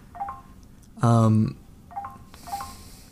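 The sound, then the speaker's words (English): Phone notification alerts from a marketing message sound off several times in quick succession: short electronic pings, fairly clear, with a loud, buzzy half-second burst in the middle. “Sorry, my phone was exploding there from some marketing thing on LinkedIn.”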